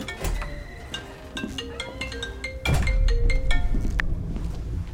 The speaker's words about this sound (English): God, how did you know she was calling? Please answer the phone,